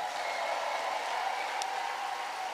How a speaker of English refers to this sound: And all the folks from House of Judah, God bless you all. Give them a good hand clap.